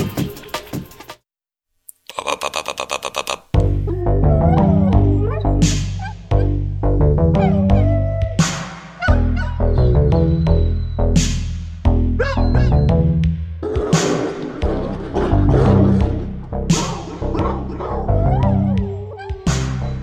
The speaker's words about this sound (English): You're listening to Siberia's hottest new dog band, ….